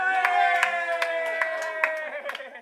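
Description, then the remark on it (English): Scattered hand claps from a small crowd, sharp and irregular, ringing out over sustained cheering voices that hold steady throughout before fading slightly at the end. “Let's give a clap”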